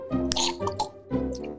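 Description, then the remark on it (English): Someone slurps a drink in a few wet, sucking bursts, with squishy, gurgling sips rising and falling over about a second and a half, fairly loud and with no talking. “Slurp. Sorry. A little parched.”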